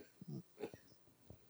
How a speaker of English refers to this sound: Ooh, it was a sarcastic cough after that. Not at all. No, that would be my sarcastic cough. I would do that.